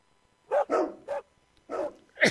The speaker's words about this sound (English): I'll be okay. That's choking.